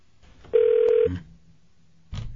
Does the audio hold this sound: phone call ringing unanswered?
yes